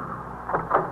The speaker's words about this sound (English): I instructed Farrell to stop the car.